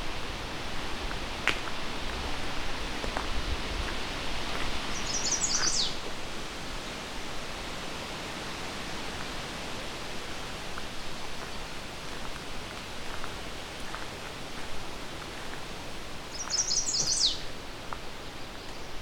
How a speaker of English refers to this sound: Got some American red starts here too.